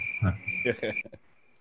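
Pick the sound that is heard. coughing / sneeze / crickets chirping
crickets chirping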